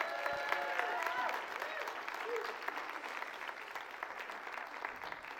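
Steady applause from a church audience for a children's teacher, a dense, even patter of many hands clapping that holds for several seconds and slowly eases off, with faint voices mixed in.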